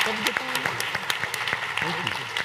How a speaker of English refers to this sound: Well, round of applause.